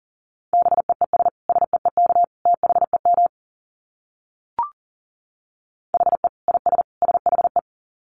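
Rapid Morse code at 40 words per minute, a steady mid-pitched tone keyed into short dits and longer dahs in quick bursts, broken by a silent gap and a single soft click.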